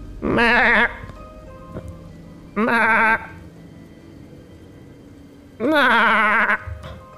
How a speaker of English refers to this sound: And they're tending to the goats, and the goats are goading.